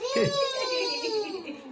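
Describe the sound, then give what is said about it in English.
A toddler lets out a long, high-pitched, loud excited squeal at home while the household watches a game, holding the shrill note for over a second as it slowly wavers and dips in pitch. “Great excitement from the toddler, as you can, and there he is.”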